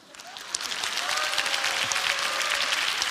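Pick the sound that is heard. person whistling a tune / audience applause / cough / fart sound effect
audience applause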